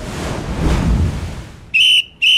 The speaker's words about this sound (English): Yep, the wind's picked up a lot. It's getting kind of rough out there.